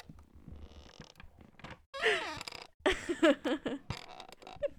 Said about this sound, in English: I'm putting the microphone down near the bottom of the chair so you can hear the creaks.